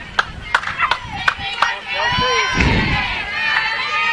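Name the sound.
ballpark crowd cheering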